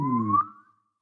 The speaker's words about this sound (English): if it was like a really loud swan whistle, wouldn't it? Yeah.